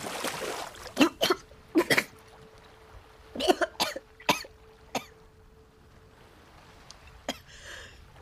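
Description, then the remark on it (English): A person chokes and coughs in harsh, sputtering bursts, several clustered coughs followed by scattered gasps, fairly loud, as someone in the water who cannot hold their breath that long starts to choke. “And then you suddenly realize you can't breathe that long in the water and you start to choke.”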